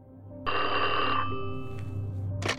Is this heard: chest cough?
no